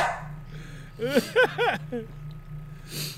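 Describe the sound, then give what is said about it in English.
A dog lets out four or five quick, high-pitched barks in a tight burst over a steady low background hum, then falls quiet. “That dog is sitting there like Ike Turner.”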